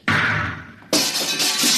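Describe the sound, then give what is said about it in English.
The lock of a control-room door is blasted open: two loud, sudden bursts about a second apart, each a harsh crash of noise that rings out briefly. No voices. “I'll have to blast the lock.”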